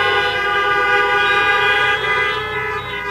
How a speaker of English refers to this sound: Well, we're glad everybody's here today. Why don't you give a honk and a wave?